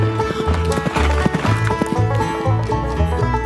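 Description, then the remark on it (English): Rapid, rhythmic hoofbeats of a horse being ridden off at a steady pace, loud, with a horse's whinny rising over the pounding steps. “Jordan, thinking his single shot had killed Brooks, jumped on his horse and rode off.”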